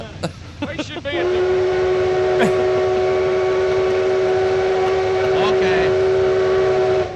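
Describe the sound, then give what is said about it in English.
A steam locomotive's whistle lets out a long, steady harmonic blast that holds for about six seconds, over chugging and rumbling rail noise as the train pulls away, heading for the fair, with a brief spoken word at the start. “Well, all aboard, gentlemen.”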